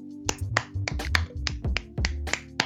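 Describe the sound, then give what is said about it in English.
Around eight sharp, sparse claps ring out one at a time at an uneven, halting pace over a low steady hum, with no talking. They imitate Charles and Camilla clapping alone during lockdown at their massive house, with no neighbours nearby joining in. “Possibly made even funnier by the fact that because they live in a massive house, it's not like they've got any neighbours nearby that will also be clapping, so it's just dead silence and them going.”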